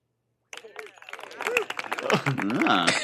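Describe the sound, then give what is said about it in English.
After a short pause, a burst of soft applause played from a soundboard rises, with dense patter of clapping mixed with cheering crowd voices. It swells steadily over about two and a half seconds. “Followed by a soft applause.”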